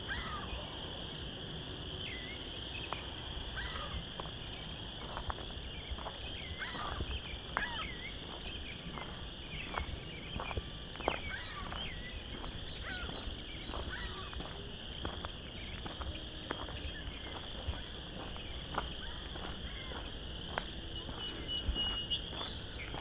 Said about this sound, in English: Vine Mount Marsh. We've got a lot of chorus frogs.